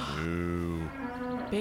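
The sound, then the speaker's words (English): Cows moo loudly: a long, deep low moo, then a higher, drawn-out call right after, with another moo just starting as it ends. “There's tons of cows out here.”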